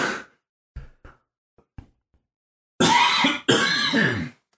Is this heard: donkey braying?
no